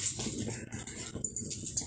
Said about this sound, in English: Just witness my dog try to attack me.